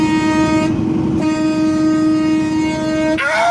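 A train horn blares in one long, steady, loud blast over a low rumble of rolling rail cars, then the tone shifts abruptly at the very end. No one speaks.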